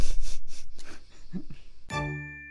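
Several quick papery rustles as a paper page is turned and handled, followed by a clear ringing chime that fades out.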